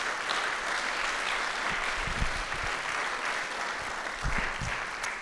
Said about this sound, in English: And I also want to just take a moment to shout out all of our staff and volunteers. They were here all day yesterday setting up this space, getting it ready for worship. So can we give them a big round of applause?